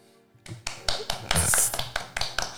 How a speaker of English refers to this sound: All right. Golf clap.